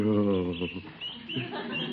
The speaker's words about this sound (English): Listen to those little birds cheep.